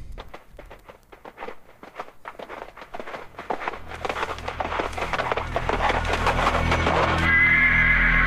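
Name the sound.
horse neighing and hooves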